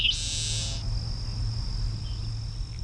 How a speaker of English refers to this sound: It's 7:30 in the morning, the sun's just up, and off to my right we can hear several Cape Sable sparrows calling.